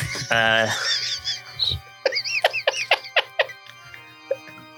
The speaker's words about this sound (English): I think I'm going insane or losing consciousness because it sounds like a bunch of ducks.